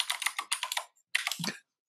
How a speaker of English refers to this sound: using his machine gun keyboard. Yeah, so we can hear everything you type. Sorry.